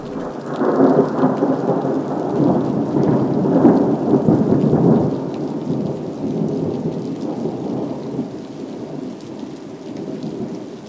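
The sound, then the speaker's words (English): A heavy thunderstorm roars steadily, with a deep rumbling thunder swell in the first half over dense, hissing rainfall that continues loud and unbroken throughout, no voices present. “The storm is so furious that the trees are dancing.”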